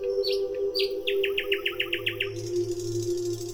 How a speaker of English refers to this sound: From a grove of myrtles came the song of a sweet-voiced nightingale.